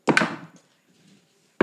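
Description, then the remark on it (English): Dice, rolled for a perception check, clatter onto a table with a couple of sharp, loud clacks, rattle briefly, and settle; a soft skittering follows before another abrupt knock at the end. No one speaks. “This dice needs to go to dice jail.”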